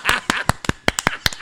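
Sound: applause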